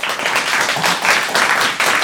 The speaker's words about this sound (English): All right, ladies and gentlemen, I put it to you. Please applaud for the character you think should win this battle. Please applaud now for Santa.